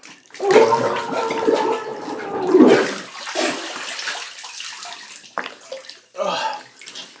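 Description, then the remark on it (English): A muffled, gurgling scream from a person kneeling in a bath with their head dunked under the water, sustained for a few seconds, followed by splashing and sloshing water as they resurface. “I am now on my knees, and I am dunking my head in the water, and I'm going to scream.”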